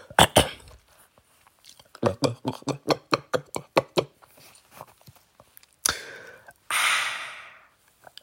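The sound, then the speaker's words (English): A couple of harsh coughs from a parched throat open, followed by a quick rhythmic string of about ten short guttural throat-clearing grunts, then a sharp catch and a long, breathy exhale. “Excuse me. Throat's rather parched.”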